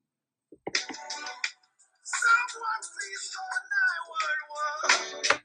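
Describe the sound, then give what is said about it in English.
A melodic phone ringtone plays loud, its electronic tones repeating in short bursts for several seconds with brief gaps between phrases. “The phone is just ringing.”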